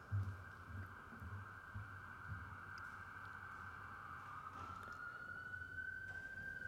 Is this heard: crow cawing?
no